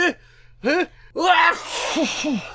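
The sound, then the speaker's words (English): A voice imitates a man sneezing hard into a napkin: two or three building vocal 'ah' breaths, then a loud, breathy, noisy burst that trails off with a couple of short voiced sounds. “And he sneezes real hard into the napkin, covering his face with it.”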